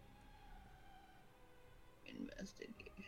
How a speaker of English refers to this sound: Investigation. Look at them dice rolling.